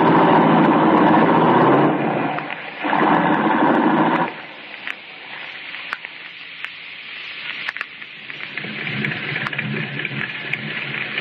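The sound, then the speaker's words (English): A light blue sports roadster's engine roars loudly for a few seconds, then drops away as the car pulls off with three people aboard and turns up an alley, leaving a quieter, steady road rumble with small clicks and knocks. “Well, come on, get going. Turn up the alley.”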